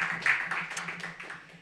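Audience applause: a soft, steady patter of many hands clapping together, holding an even wash of claps for a moment before gradually thinning out, with a low hum underneath and no talking.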